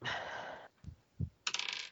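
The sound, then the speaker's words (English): Two dice, rolled for an armor check, rattle and clatter across a hard tabletop, a bright skittering roll followed by a couple of soft knocks and a final burst of clicking as they settle. “I got 2x10 on 2 dice.”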